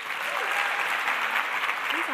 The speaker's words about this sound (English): So please join me and let's get our clapping into formation to welcome to the stage